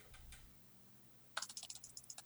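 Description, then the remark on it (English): Rapid typing on a computer keyboard, a quick irregular run of crisp clicks that starts suddenly after a moment of quiet and continues, with no voices. “Clickety-clack. It's like one of my favorite sounds, computer keyboard.”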